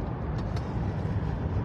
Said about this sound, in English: Well, look at all that traffic going that way. Yes. What do you make of that? Construction. Huh.